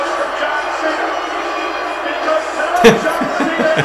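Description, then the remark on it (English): A large crowd boos a man after CM Punk gave him the ring, in a steady, loud, dense roar that swells slightly toward the end. A single sharp slam cuts through near the close. “Wait for more booing? There it is.”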